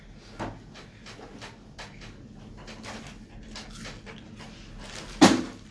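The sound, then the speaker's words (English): An office chair being adjusted as someone tries to lower it, with a run of light knocks, rattles and creaks, ending in one sharp, louder clunk near the end. “Yo, you're gonna break the chair, you stupid ass.”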